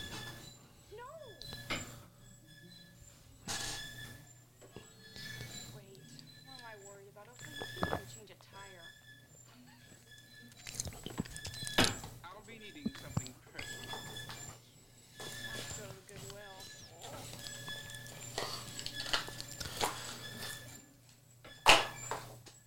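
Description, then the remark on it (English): A clothes dryer runs with a steady low hum while sharp, high-pitched squeaks repeat throughout, with occasional thumps and muffled voices. “And this dryer is being squeaky as crap.”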